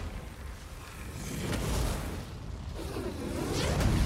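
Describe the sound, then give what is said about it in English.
Heavy blasts from Nancy Wheeler's sawed-off shotgun, fired at Vecna, boom through a dense, rumbling roar, with a couple of sharper bursts standing out as the loud, reverberant din swells and builds, no voices present. “A shot to the shoulder, a shot to the gut, another shot to the shoulder.”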